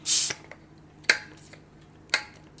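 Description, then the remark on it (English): A bottle of George Jensen sparkling rosé is opened with a short burst of fizzy hiss, followed by two sharp, crisp clicks about a second apart, with no talking. “You can open that. So today we're going to be drinking a George Jensen sparkling rosé.”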